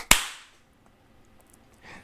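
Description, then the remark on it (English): A single sharp, loud hand clap, a clap-down done for syncing a recording, cracks out at the start and its tail fades quickly, leaving near silence, with a soft rustle of noise toward the end. “All right, I'm gonna do the clap down.”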